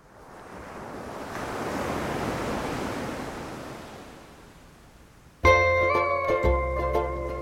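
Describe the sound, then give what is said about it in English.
A single sea wave swells into a broad, hissing wash and slowly draws back on a beach of soft white coral sand, in warm sunshine with a sea breeze, then a loud burst of tonal, music-like sound cuts in abruptly near the end. “The warm sunshine, the sea breeze, the soft white coral sand beneath my toes.”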